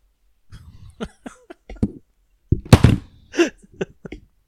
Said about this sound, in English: Did you just fall over? Yeah, that's how impressed I was with that one. I just knocked my mic over.